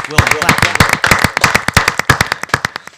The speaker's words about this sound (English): Yes. Give it up. Claps. Claps.